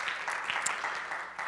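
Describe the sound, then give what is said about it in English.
An audience claps steadily, a dense, crackling patter of many hands blending into a continuous wash of applause with no voices standing out. “And I appreciate all of you that are clapping.”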